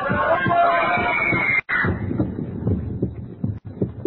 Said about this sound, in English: First, the voices echoing in my ears, the fragments of speech about a concert, are the same voices I heard in that crowd, rising again and again to the climax of a woman's scream.